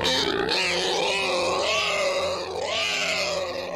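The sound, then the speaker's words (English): A pig roaming in a yard grunts and snorts continuously for a few seconds, its rough, throaty calls rising and falling in pitch with a couple of higher, squeal-like swoops. No one speaks. “Hey, what's that pig doing in your yard?”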